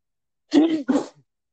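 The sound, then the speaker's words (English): A single sneeze in two quick bursts, a voiced intake-like sound followed immediately by a sharp release, fairly loud and heard on its own with no talking. “Other than that sneeze?”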